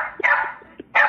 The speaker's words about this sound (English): There is a dog saying cornflakes.